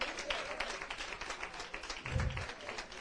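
A church audience, standing, applauds to give God a hand of praise after the morning sermon, with steady, dense clapping from many hands throughout and a few faint voices mixed in; a brief low thump lands near the end.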